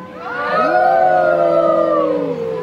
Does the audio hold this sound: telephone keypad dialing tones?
no